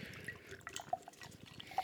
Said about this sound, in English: That is a lot of foam. Have we switched bodies today? Yeah, your pour is immaculate over there.